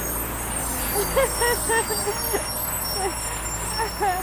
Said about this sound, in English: Oh, my gosh. And there comes the garbage truck.